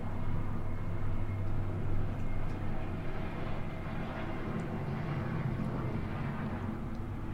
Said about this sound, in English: Now that's a loud plane going over.